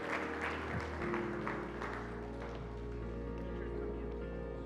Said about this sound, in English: We're going to have a special prayer, time of prayer for those that are starting school. Let's give these kids a round of applause this morning as they make their way. Come on up, come on up.